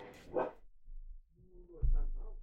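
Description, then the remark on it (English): A dog having a little tantrum barks sharply once, then lets out whiny, yelping vocalizations a moment later, somewhat muffled, with a low rumble underneath. “Oh, you get to hear my dog having a little tantrum in the background.”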